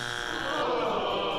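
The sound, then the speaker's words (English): A harsh, steady game-show buzzer for an incorrect answer sounds for over a second, a loud flat drone thick with raspy, buzzing harmonics, with no talking. “How about the incorrect? We hope to not have to use this one very much, but just in case, here it is.”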